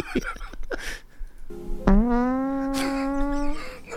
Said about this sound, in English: I'm drinking out of a keg, and we're listening to fat bastard fart.